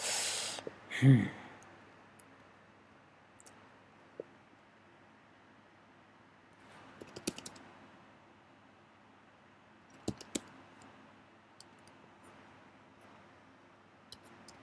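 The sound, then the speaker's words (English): Scattered, quiet computer keyboard clicks, a few taps in small clusters separated by pauses, over a faint steady hiss. A louder soft thump comes near the start. No one speaks. “I think maybe I'm typing something wrong.”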